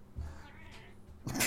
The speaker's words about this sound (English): Not now, cat.